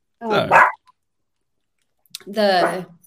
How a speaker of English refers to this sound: But but also, my dog.